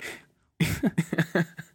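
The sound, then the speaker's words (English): A brief airy hiss, then a quick sputtering run of about five buzzy fart noises, fairly loud, with no one talking, played as part of a 4D theater attraction. “Some farting. I hate that shit.”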